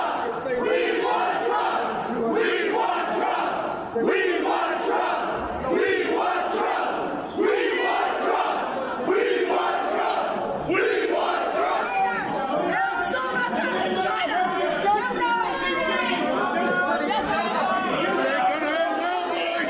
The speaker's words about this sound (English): This ain't gonna end well, boys. They're yelling at the cops. Not going to end well.